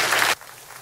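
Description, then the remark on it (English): A brief, loud wash of audience clapping at a morning church service, dense and hissy like heavy rain, cuts off abruptly after a third of a second, leaving only faint low background noise. “Just give the Lord a big clap this morning.”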